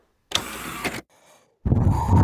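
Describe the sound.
A voice makes a breathy whooshing noise imitating air conditioning: a hissy rush lasting under a second, a brief quiet pause, then a second, lower, rumbling blast of air sound.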